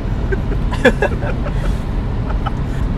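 Steady low rumble of road noise inside a moving car, constant throughout, with a brief faint murmur of voices near the start.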